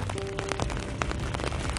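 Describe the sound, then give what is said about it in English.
Raindrops patter steadily on a phone in a case, outdoors in the rain, hitting around the camera: a dense run of quick irregular taps and ticks over a constant wash of rain, with a brief faint tone near the start and no voices. “Rainy Day”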